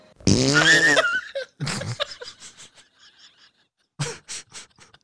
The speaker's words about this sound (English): Was that fart actually in the movie? No, I added that for comedic effect.